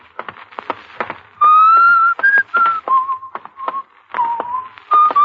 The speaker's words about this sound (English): Stop whistling that. It gets on my nerves.